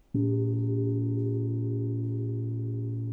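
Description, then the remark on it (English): A small moon gong, pitched around A, is struck once, giving a deep, steady bass tone with shimmering overtones that hums on with little decay for several seconds, no voices over it. “So yeah, this is the moon gong. It's a peisty moon gong. It sits around A, but you'll hear it.”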